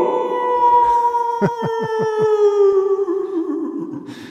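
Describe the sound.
A person imitates a werewolf howl: one long, loud vocal howl whose pitch slowly falls, with a brief run of quick pulsing wavers midway before it trails off.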